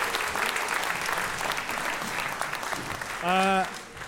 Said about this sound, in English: Let's give him a round of applause so he can hear us at the Cameron House.